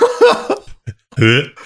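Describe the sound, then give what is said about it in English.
A voice imitates a big blacksmith's hacking, retching cough: a few short harsh bursts, then a sustained gurgling, strained hack as he coughs up greenish yellow mucus and a 4 or 5 inch long slug, fairly loud. “And you watch as he proceeds to cough up what looks like about a 4 or 5 inch long slug.”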